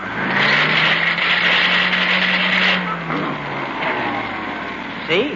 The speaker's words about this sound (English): I fixed your vacuum cleaner. Oh, good for you. That's wonderful. It's right here. Try it. Here, I'll switch it on.